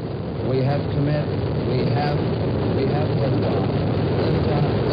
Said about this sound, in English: We have liftoff, 7:51 a.m. Eastern Standard Time. Looks good. We've cleared the tower. Oh, there's the rumble in our building. It looks good. It looks like a good flight. It's a beautiful takeoff so far. This building is shaking under us.